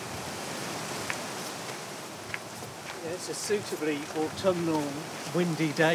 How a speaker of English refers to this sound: Suitably autumnal, windy day for a Corks Road walk, isn't it? Lovely underneath this wonderful old oak tree.